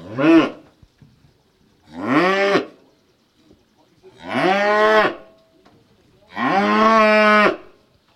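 Cows moo four times in a row, each call a long, full lowing that swells and fades, with short quiet gaps between. The calls are loud, and no one speaks.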